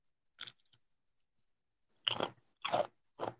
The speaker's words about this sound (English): Well, maybe you can't hear him because you're munching so loud.